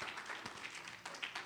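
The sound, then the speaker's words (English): A crowd claps hands in praise of the Lord in a dense, steady wash of applause, many overlapping claps at moderate volume with no voices standing out. “Give the Lord a hand clap of praise.”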